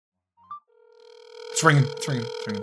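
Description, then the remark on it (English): A steady electronic ringback tone hums on a phone line after a brief click, on a call placed to a 404 area-code number in Atlanta, Georgia, continuing as a voice begins talking over it partway through. “It's ringing. That never happens.”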